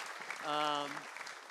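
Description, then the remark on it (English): An audience applauds a group of women with a steady, dense wash of clapping, and a single sustained vocal cheer rises over it briefly in the middle. “All right, give these ladies a round of applause.”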